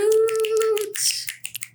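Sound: finger snaps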